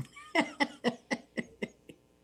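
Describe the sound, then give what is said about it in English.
A quick fit of about seven coughs in a steady rhythm, moderately loud at first, each burst weaker until the last fades out. No talking. “And hopefully next week our coughs will be gone.”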